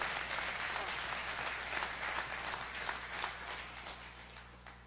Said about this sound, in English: Come on, give them a hand clap of praise.